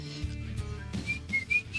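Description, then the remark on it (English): Someone whistles a short, catchy commercial jingle tune, a few bright notes rising and falling in quick succession, moderately loud, with no talking over it. “See, that's the same thing I whistled, it does sound like magically delicious, but that's kind of what the Old Spice commercial sounded like.”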